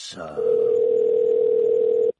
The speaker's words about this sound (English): I love the American ringtone. It sounds so exciting.